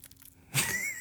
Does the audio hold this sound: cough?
no